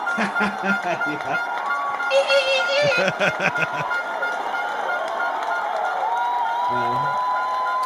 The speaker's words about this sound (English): There's the cheap air horns.